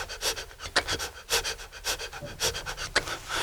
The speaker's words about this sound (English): A lot of breathing.